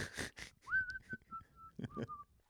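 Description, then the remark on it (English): Someone whistles a short, simple melody, a handful of clear sustained notes sliding up at the start, preceded by a couple of brief breathy rustles. “Maybe whistling a little tune.”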